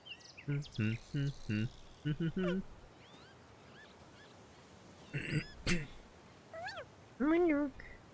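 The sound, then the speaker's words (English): A cat meows in a quick run of short calls in the video game Planet of Lana, coming to Xbox and PC in 2022, then a few more drawn-out meows after a pause, with faint insect chirping and bird-like calls in the background. “Dude, I just want to pet the cat.”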